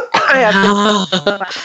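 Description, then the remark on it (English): A loud cough with a rough voiced rasp, drawn out for about a second, then broken into a few short, choppy bursts that trail off. No talking alongside it. “Speaking of understanding, I have to cough.”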